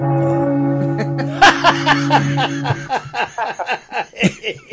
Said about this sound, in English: It sounds very much like a gong, but oh well. Yeah. It's a gongy bell. Belly gong.